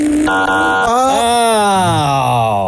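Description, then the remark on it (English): A voice imitates an airplane taking off down a runway as a clue in a guessing game: a loud, continuous buzzing drone that jumps up in pitch, then slowly glides downward over a few seconds. “Airplane taking off.”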